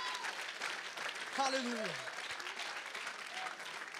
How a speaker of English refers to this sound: In the name of Jesus, can we just give God a hand clap of praise right now?